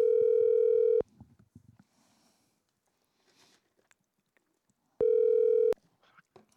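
A loud, steady telephone dial tone drones for about a second, then soft clicks and faint rustling, before the same flat buzzing tone returns for a shorter burst, as a phone call is being placed.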